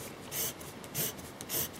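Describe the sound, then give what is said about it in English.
A pencil scratches across paper in three short, evenly spaced strokes, each a soft papery rasp, quiet, with no talking. “I love this pencil, this magic thingy. It's cool.”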